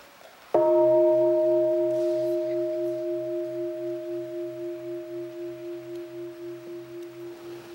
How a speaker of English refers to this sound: And I go hold the inviter and make a half sound. And allow people to have enough time to prepare themselves before I invite the bell to emit a full sound.